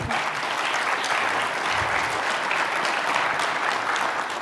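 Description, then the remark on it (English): An audience at a panel discussion on energy applauds steadily, a dense wash of many hands clapping at an even, sustained level for several seconds with no voices rising above it. “Can we get a warm round of applause?”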